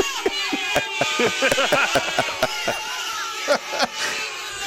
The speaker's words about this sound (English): The mashed potatoes are getting booed.